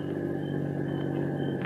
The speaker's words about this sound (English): Here comes the armored truck.